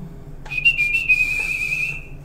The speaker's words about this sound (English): I was Port Talbot Whistling Champion, 1988.